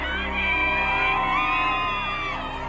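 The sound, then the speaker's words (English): A large crowd of Johnny Depp fans outside the Virginia courthouse cheers and whoops continuously, many overlapping voices yelling with rising and falling shouts, loud and sustained throughout without a break. “Outside the Virginia courthouse, Depp fans gather to cheer on their hero.”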